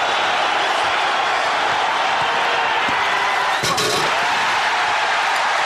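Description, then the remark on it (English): A dense, roaring arena crowd cheers continuously at high volume, reacting to Michael Jordan's slam dunk at the 1988 slam dunk contest, with a sharp burst of louder noise partway through as the reaction swells. “Well, the crowd lets you know what they think of it.”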